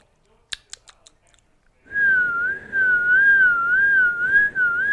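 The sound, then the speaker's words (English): A few quick clicks and mouth sounds, then a person begins a sustained whistled tone imitating a tone they heard, held steady with a slight wavering pitch, fairly loud, with breathy air noise underneath. “Don't laugh at my horrible ability of whistling, but I'm gonna try to give you whatever.”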